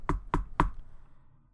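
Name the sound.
knocking on a door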